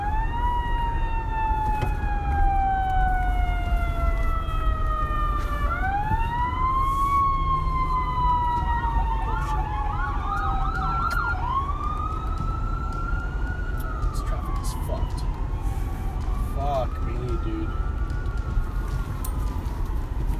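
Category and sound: vehicle, emergency vehicle siren passing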